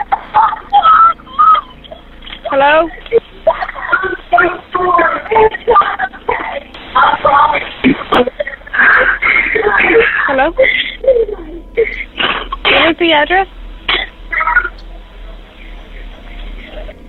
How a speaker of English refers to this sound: Now, it's pretty hard to hear anything in that call, aside from a few whimpers.